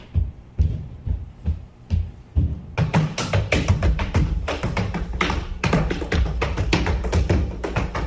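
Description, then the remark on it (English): Heavy feet stomp on a ceiling: a few spaced, dull thuds at first, then a loud, rapid flurry of banging and rattling impacts that keeps going without pause. No one speaks. “Guy holding his friend upside down so he can stomp on the ceiling as payback to noisy neighbors.”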